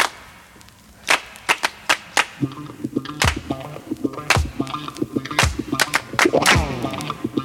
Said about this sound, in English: Well, it's hand clap, so it could be any song, really.